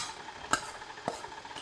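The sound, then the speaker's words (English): An electric mixer with a beater attachment whirs steadily through batter as dry ingredients are added a spoonful at a time, a soft continuous churning with two sharp clicks as the beaters knock against the bowl. No one speaks. “I'm going to stop this and sort of wipe it off the top of the beater attachment.”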